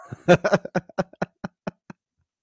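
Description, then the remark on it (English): A short sound-effect bite of knocking on a door: about a dozen sharp raps that start fast and loud, then slow down and grow fainter until they stop. No one speaks. “The door one is great, too.”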